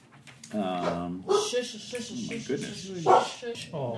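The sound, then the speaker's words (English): A village dog barks repeatedly in short, uneven bursts, moderately loud, with brief pauses between the yaps. “But village, are there village dogs, perchance? There are village dogs.”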